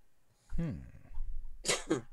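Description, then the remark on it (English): A single sharp sneeze: a breathy intake with a rising vocal tone, then an explosive burst and a quick second expulsion, all within about two seconds. “Bless you.”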